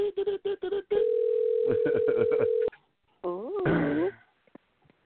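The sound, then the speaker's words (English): Quick series of touch-tone dialing beeps as a phone call is placed to a guest, then a steady dial tone with more keypad tones pressed over it, followed by a short burst of sliding, warbling connection tones. “I'm going to dial her and I. You're going to hear some phone dialing.”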